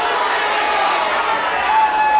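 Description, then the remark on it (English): A large concert crowd yells out the name of a song all at once in answer to the performer, a dense, steady roar of many overlapping voices that stays loud for a couple of seconds without any single voice standing out. “He kind of asks everybody to yell out the song.”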